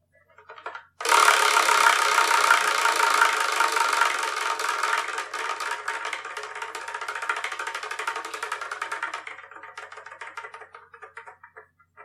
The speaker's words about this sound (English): And we're going to sort of spin the wheel.